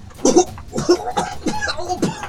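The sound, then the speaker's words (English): A person imitates a fit of harsh, hacking coughs as if coughing up blood while crawling away, about five rough bursts in quick succession, fairly loud, with a strained, sputtering quality and no words spoken. “I'm like coughing up blood, crawling away.”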